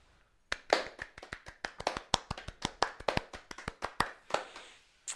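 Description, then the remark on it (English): A short burst of hand clapping, quick sharp claps in an uneven rhythm, fairly loud, about twenty claps over several seconds before it stops, applauding the Watermelon Sour named the favourite of 24 beers tasted. No talking over it. “So, the winner was actually the Watermelon Sour. Do we clap or...”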